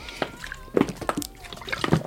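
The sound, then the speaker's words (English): Liquid sloshing inside a 2-liter plastic Squirt soda bottle, used as a water bottle, as someone drinks from it, with a few irregular gulps and glugs spread over a couple of seconds. “I'm using it as a water bottle.”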